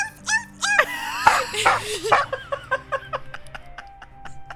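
A recorded dog bark sound effect: a small dog yaps and whines, starting with a few high, drawn-out yelps, then settling into a quick run of short, sharp barks.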